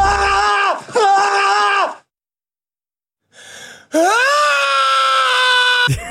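Tom Cruise lets out a loud, sustained scream in a film, pauses in silence, then draws a sharp, audible deep breath before launching into a second long, strained scream that cuts off abruptly.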